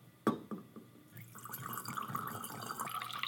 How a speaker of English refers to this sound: And the final addition is water. So you pour water to the top. Do it slowly so this doesn't suds up a lot.